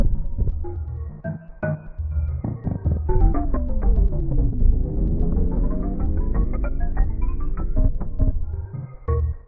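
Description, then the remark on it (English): The theme from the video game Crash Bandicoot: an instrumental with a marimba-like melody over a heavy, throbbing bass and sharp rhythmic hits, its pitched line sweeping down and then climbing back up. No one speaks. “Kind of like a marimba to it, too.”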